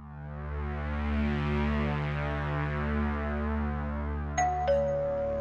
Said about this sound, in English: The bell rang, and Winnie opened the heavy oak door.